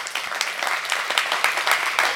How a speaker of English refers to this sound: Say amen. Come on, clap your hands.